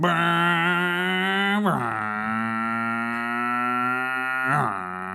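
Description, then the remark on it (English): A person imitates a car driving away with a sustained, buzzy vocal engine drone that drops in pitch twice and tapers off slightly at the end. “That was a car noise. Yeah, I liked how you tapered off at the end. It was getting farther.”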